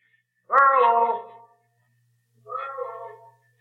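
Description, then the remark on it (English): A single loud, drawn-out shout calling for a missing man rings out in Echo Valley, then returns off the cliffs around a waterfall about a second later as a fainter, slightly shorter echo of the same call. “The cliffs around the waterfall down the trail make a perfect sounding board.”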